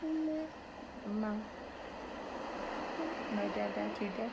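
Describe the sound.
A recording of ocean sounds plays at moderate volume for the children at a daycare center, a steady wash and continuous rushing hiss like surf, while faint, high voices chime in briefly over it now and then.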